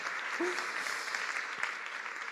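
A crowd claps steadily in a dense, continuous patter of many hands, with a brief vocal whoop near the start, sustained at an even level throughout.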